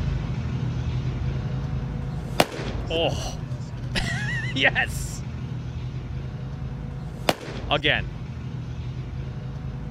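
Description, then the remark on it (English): Two sharp, loud pops of a pitcher's warm-up fastball smacking into a rookie catcher's mitt, spaced several seconds apart over a low steady rumble, with voices exclaiming between the catches. “Just the sound of this fastball hitting a catcher's mitt is...”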